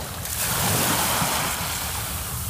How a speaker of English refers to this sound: This morning I spent time with the ocean. I stood on the beach, took off my sandals, and let the small waves swallow my ankles.